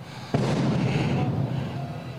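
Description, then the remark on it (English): A single sharp blast bursts out suddenly, then a dense, roaring wash of noise carries on loudly as Seth Rollins' entrance pyrotechnics go off on WWE Monday Night Raw. “Keith Lee improvising as Seth Rollins' pyro goes off in the background on Monday Night Raw.”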